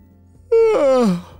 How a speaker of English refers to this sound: She couldn't help but yawn and her eyes were getting very heavy.